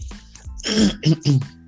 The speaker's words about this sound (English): Like, y'all might hear me try to clear my throat because I'm trying to. But y'all just bear with me.